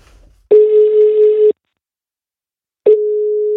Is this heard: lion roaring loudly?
no